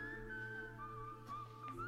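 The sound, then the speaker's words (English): A clear, high whistle in a music video soundtrack, meant to feel Western, holds a long note, dips to a slightly lower pitch and wavers before rising again at the end, over a steady low droning background with no talking. “And the whistle. So here's the whistle.”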